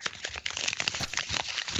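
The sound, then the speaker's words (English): A fire crackling in a fireplace: a steady, dense stream of dry pops and snaps with a soft hissing underneath, fairly quiet and with no voices. “And the fire. This is the fire.”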